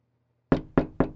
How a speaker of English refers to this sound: Emma knocked on the door of the last of Huang's neighbors, Yuto Fujita.